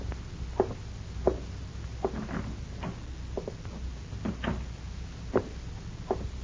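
A house door is eased shut quietly, with a scattered series of soft clicks and light taps from the latch and frame over a faint low background hum.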